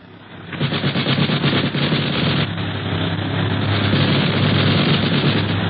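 Sustained rapid machine gun fire from an aircraft shooting at another plane in the air, a dense rattling burst that continues loudly throughout over a steady low engine drone, with no speech.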